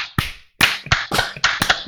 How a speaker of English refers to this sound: That's called a reverse brew baker. That's you clap really fast and then you slow down. It's the reverse. The reverse brew baker.